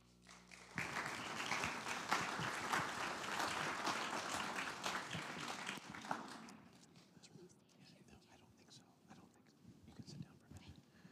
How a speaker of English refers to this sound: Why they applaud for you and not me, I don't understand. But thank you.